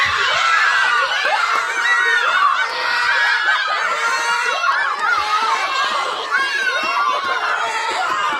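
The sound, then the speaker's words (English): A group of children imitating monkeys makes loud, continuous high-pitched monkey-like hoots, squeals and chattering, overlapping with giggles and shrieks, filling the whole stretch without pause. “Okay, you want to act like a monkey too? You go act like a monkey.”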